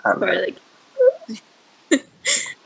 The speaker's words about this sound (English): Yeah, honestly, it's been like 6 years of them, so like, I'm used to it. I don't even realize that I'm hiccuping